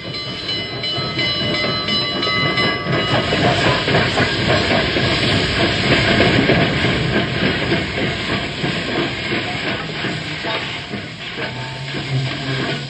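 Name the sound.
train pulling into station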